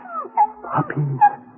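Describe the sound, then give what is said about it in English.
Several small, high-pitched mewing whimpers overlap in a brief cluster, with thin squeaky cries rising and falling as six newborn puppies fuss together under a water pipe. “Puppies, darling. Yes, sir. Six of them.”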